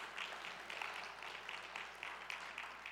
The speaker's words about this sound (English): This is a unified church, and we're unified in the mission of connecting disconnected people to Jesus. Do we agree? Yeah, we ought to clap for that.